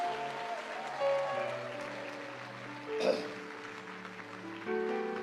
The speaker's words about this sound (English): The rest of you, please sit down for a moment and let them, clap for them as they go. God bless you.